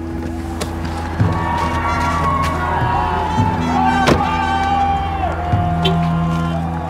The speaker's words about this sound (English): Immediately, I see this sea of people. Protesters who have lined up on one side of the street with bullhorns. They're yelling and chanting.